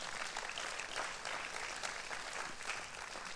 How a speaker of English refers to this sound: Because the gospel is... Yeah, clap. Why not clap? Yeah.